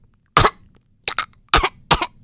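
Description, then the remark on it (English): A voice imitates a parrot's coughing: four sharp, raspy coughs, the first alone, then three in quick succession, fairly loud with no talk. “And he's huge puffs of smoke, and smoke's filling the area, and the parrot starts coughing.”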